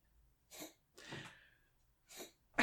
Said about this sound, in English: Sorry, Tiffy's about to pause to throw up a hairball. It's just kind of funny. Is she gonna be okay? No, she's coughing. Okay, I can't tell if that looks like a hairball.